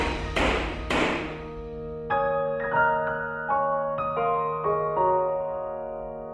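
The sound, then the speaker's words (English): Two sharp gavel knocks in quick succession as a judge bangs his gavel in court, followed by a short sequence of ringing musical notes that step along and slowly fade out. “And he bangs his gavel.”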